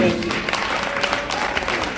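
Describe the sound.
A steady burst of applause from an audience at a barista competition, following a competitor's espresso, dense overlapping clapping at a moderate, even loudness throughout, with a faint murmur of voices underneath.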